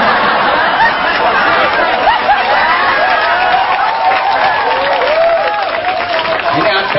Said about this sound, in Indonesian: Aku tahu dia ikut tepuk tangan kok.